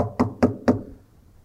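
Three evenly spaced, firm knocks on a wooden bedroom door, each with a short hollow resonance, followed by a quiet room tail.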